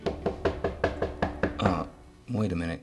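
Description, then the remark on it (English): A steady series of about eight sharp, fairly loud knocks on a door late at night, followed by brief voiced vocal sounds with no clear words. “Someone's knocking at my door.”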